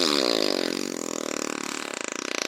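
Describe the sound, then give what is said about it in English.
A long, loud, buzzy fart sound effect, one continuous rasping blast that stretches for a couple of seconds and sputters rhythmically toward the end, with no voices. “But before his bottom had even lifted fully from his chair, Abu Hassan let fly a great and terrible and extremely noisy fart.”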